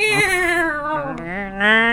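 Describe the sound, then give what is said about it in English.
A person's voice imitates the noise a cat named Simba made when climaxing: one drawn-out, wavering, nasal whine lasting about two seconds, dipping slightly in pitch midway and then swelling louder toward the end. “And he is a weird fucking noise to hear a cat come. Like a...”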